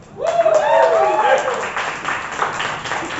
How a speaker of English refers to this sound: Applaud the poet. Keep your applause going.